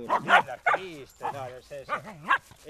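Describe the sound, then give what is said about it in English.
A truffle-hunting dog barks and yips: half a dozen sharp, excited bursts in quick succession, some sliding up and down into whiny, yelping tones between barks. “Dogs, the key to a hunter's success.”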